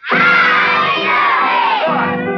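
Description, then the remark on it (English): A group of children shout a greeting together in one loud, sustained yell during a sing-along song, their high voices blending into a brief collective cheer for a couple of seconds. “Well, if you don't, I'll tell you how. Just yell.”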